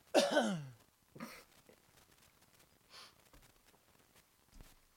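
A man's loud, rough cough bursts out at the start, followed by a few fainter throaty sounds and breaths scattered across the quiet that follows. No one speaks.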